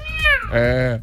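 Two quick, loud cat meows in succession, the first sliding downward in pitch and the second steadier and lower, clear over a faint low rumble.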